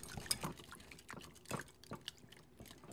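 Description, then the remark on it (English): A whisk stirs a thick, wet mixture of hot cream, chocolate and butter in a bowl with soft, irregular sloshing strokes and faint clinks against the side, whisking until it melts into one mass. It is quiet, with no voices. “Take a whisk and just whisk until all of that is melted into one mass.”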